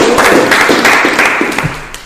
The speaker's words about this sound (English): Clap it up for the wood, man.